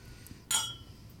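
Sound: glasses clinking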